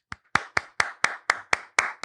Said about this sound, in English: Thank you. I appreciate the recognition. hold for applause.